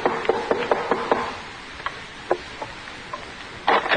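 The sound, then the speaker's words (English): A quick run of sharp, hollow knocks on a door, five or six in a row, followed by a few scattered softer taps and a brief shuffling noise at the end. No voices. “That's the door. It'll be him.”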